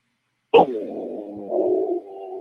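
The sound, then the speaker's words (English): A person imitates a panther's growl: a sudden harsh burst, then a sustained, raspy, low-pitched rumble that wavers in pitch and swells slightly before easing off, with no talking. “Here's my best Panther growl.”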